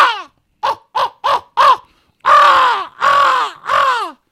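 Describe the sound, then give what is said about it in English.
A person imitates crow calls by mouth while turkey hunting, to locate turkeys later in the day: a quick run of four short caws, then three longer, harsher drawn-out caws, loud with brief pauses between. “So at that point, I just switch over with a crow call and go, crow call is always.”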